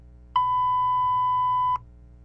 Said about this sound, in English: Yeah, you're gonna do the beep?